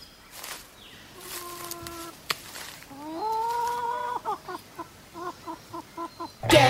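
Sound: chicken clucking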